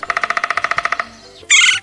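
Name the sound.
woodpecker call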